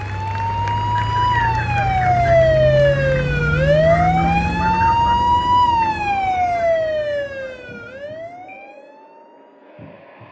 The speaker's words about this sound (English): I'm being told there's an ambulance outside, ready to take her straight to hospital.